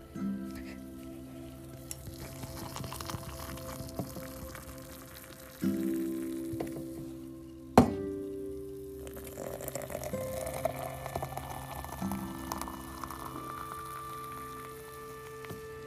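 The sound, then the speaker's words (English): A steady hiss of water pouring into a coffee cup, with a low hum in the background and one sharp clink partway through; the pour's tone rises slightly toward the end. “Now that summer is here, I love the sound of the water pouring into my coffee cup.”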